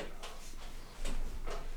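A chair creaks and squeaks several times in short, irregular bursts, fairly quiet, with a low background hum and no talking.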